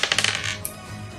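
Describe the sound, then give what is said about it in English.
Dice clatter across a hard surface in a quick burst of sharp, bright clicks that slow and settle within about a second, with no voices present. “You should roll again.”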